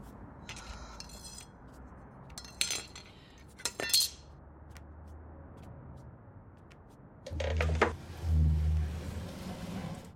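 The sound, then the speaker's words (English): Cutlery, dishes and other items are knocked off a table, clattering in several bursts of bright, ringing clinks scattered through the first few seconds, then a louder, longer jumble of clattering near the end over a low rumble. “And I knocked all the shit off the table.”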